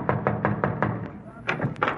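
A series of quick, solid knocks on the door of movie star Jane Wyman's house, about five in an even rhythm, then a short pause before a few more raps follow, with a low murmur underneath.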